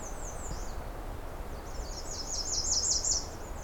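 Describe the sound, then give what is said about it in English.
Robin song with other birds chiming in, a tangle of high, quick chirps and trills that swells toward the end over a low, steady outdoor rumble. “I wonder if this is that effect where, because the robin started singing, other birds decided to try to fill the soundscape as well.”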